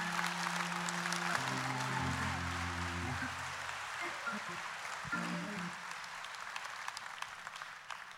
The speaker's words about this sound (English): Oh, come on, somebody clap.